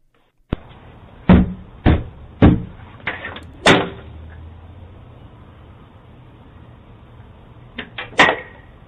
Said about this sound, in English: Boy showing up to a black family's door, cracks whip, caught on doorbell cam.